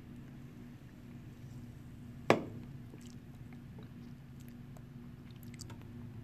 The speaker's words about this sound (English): So now let's take a sip of this and see how it goes in the palate.